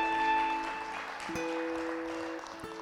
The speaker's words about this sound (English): Yeah, you can clap for that. You can clap for that. It's good.